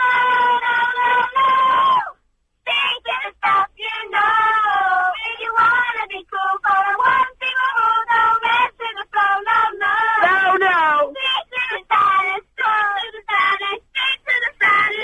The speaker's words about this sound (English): I'm not sure, but my kids want to sing High School Music to you. Oh, okay, go for your life. They want to cheer you up, right? Ready, kids?